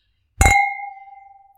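wine glasses clinking

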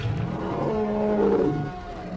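dragon roar sound effect

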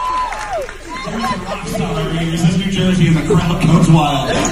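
crowd cheering wildly

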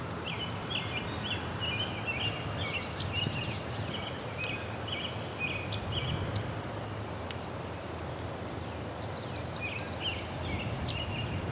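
myrtle warbler tick call

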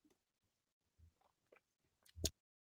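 sipping a drink

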